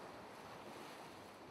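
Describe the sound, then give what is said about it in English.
A steady roar of ocean surf crashing down onto a sandy shore amid mist, broad and hissing with a faint windy edge, continuous throughout with no voices. “I couldn't even see the waves crashing down in front of me, or the sand, or the mist, nothing.”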